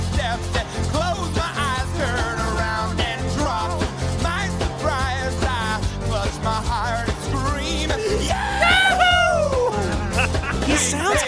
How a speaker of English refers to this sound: So one of the comments mentioned that in 12 seconds from now, there's a scream